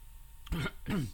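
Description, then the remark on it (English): Two quick, wet coughs in a row, moderately loud, each a harsh burst trailing into a voiced rasp, from someone who swallowed some orange the wrong way. “It's not a dry cough. Hopefully, I just swallowed some orange the wrong way.”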